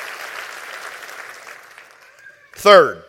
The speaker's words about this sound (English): Clap your hands and rejoice in that right now.